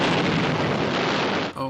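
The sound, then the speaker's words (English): A loud, sustained explosion roars as an Overlander model vehicle is blown apart, tires flying, a dense crackling rumble lasting about a second and a half before cutting off abruptly, followed by a brief moment of voice. “But this one being blown up and smashed and ruined and crushed looks just as real as the regular one.”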